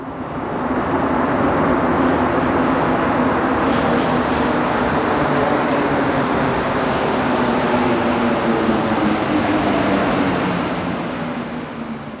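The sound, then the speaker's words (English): A loud, steady rumble of a subway train fills the whole stretch, a dense roaring wash that swells slightly partway through and fades a little at the end, with no voices. “And I just hope anxiety wouldn't grow like subway's noise.”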